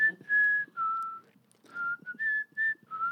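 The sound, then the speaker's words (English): A person whistles a simple dragon song, holding clear sustained notes that step up and down in pitch, with short pauses between phrases and no talking. “Baker enters whistling …, or another dragon song.”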